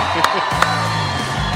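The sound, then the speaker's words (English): A loud crowd cheers as a guest is brought out, a steady, dense roar with a couple of sharp claps or whoops popping out early on. Shouting voices blend into the noise. “And this crowd might be about to get really loud here in just a second.”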